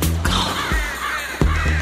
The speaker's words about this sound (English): Can you take all these freaking crows or whatever these birds are you got in here with you?